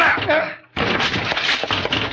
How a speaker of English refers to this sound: They shut me out and locked the door! Let's break it down.